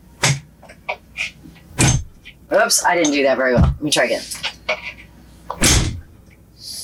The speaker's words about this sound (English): So how's the door shut on your Max? Try it. Well, let me see. Let's listen to the sound of the door.